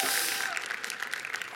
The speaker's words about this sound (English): Two rounds of applause, Michelle. Wow. Wow.